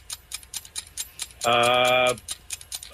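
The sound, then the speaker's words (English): A 10-second game-show countdown clock ticks in quick, steady clicks throughout, and a loud, sustained electronic buzzer tone cuts in for under a second midway through. “10 seconds on the clock. Go.”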